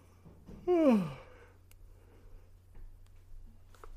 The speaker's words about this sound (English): Oh, which one of you yawned? I felt it. One of y'all yawned, made me yawn, get all relaxed.